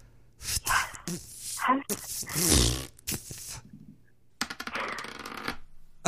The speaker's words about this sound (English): You have to roll for me. All right, well, hold on, let me grab one of my dice, let me blow on it.